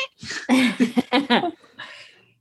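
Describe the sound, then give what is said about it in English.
A kitten screams and meows, a loud run of strained, wavering cries in quick succession, then a softer trailing mew. “I've got a screaming kitten.”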